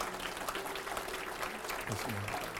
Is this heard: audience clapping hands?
yes